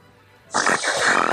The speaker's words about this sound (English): This guy recorded me dozing off. Can you do that? I want to hear you snore like that.